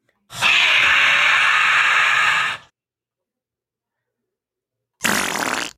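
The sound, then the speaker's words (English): A loud, drawn-out fart noise blares for about two seconds, then after a brief silence a second fart sound starts up. No one speaks. “do you think that love stinks and that that romance is getting off to a bad fart?”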